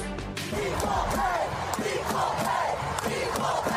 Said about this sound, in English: The crowd cheered the win of the U.S. women's national soccer team at the World Cup in France in 2019, supporting the team's long fight for equal pay.